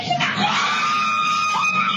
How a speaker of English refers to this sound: Blood-curdling screams as a vehicle is carjacked with a baby inside.